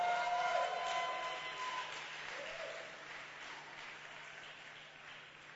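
A church audience claps for visiting missionaries in a sustained burst of dense, steady applause that gradually tapers off over several seconds, with a faint tonal hum underneath.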